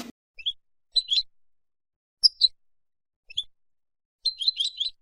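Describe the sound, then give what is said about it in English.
A goldfinch sings in quick, high-pitched twittering bursts separated by short pauses, ending in a rapid tinkling run. The song is clear against a quiet background. “Well, we're into double figures now, and very often we're into double figures of this bird, the goldfinch, in our gardens.”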